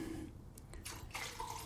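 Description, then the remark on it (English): Water runs and splashes from a tap for washing during developing, with scattered drips and a brief surge of gushing toward the end, fairly quiet overall with no voices. “Like I say, I give it three washes with water.”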